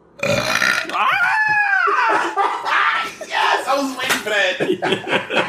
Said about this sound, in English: This little demon burped that motherfucker out. Who knew such big noises could come from a small package?